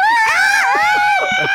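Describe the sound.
A person imitates a screaming chicken with a loud, shrill, sustained squawk that wavers in pitch, continuous for over a second, with a few faint background sounds underneath.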